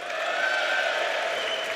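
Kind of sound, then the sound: crowd, audience applause and cheering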